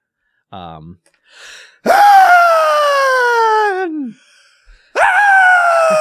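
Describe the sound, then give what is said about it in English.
A man imitates the scream of a shrieking lady dressed in black on a horse: a short gasp-like intake, then a long, loud, high-pitched shriek that slides downward, and after a brief pause a second shriek begins. “Do your impersonation of her scream.”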